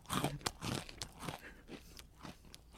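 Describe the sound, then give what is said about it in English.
Loud, dry crunching of pretzels being chewed, a run of crisp bites and crackly chews with short pauses between them, with no talking. “You Can't Eat Pretzels During A Podcast”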